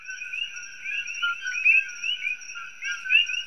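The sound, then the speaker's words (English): A dense nighttime chorus of invasive coqui frogs, shrill chirping calls overlapping steadily with a constant high ringing hum, some individual calls standing out louder. No one speaks. “And so now we're actually expanding to Maui, the neighbor island, And rather than devil weed, which they don't have, we're going to focus on Kochi frogs, which is an invasive frog.”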